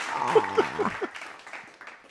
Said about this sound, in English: You know what? Let's go ahead, give her a little bit of applause.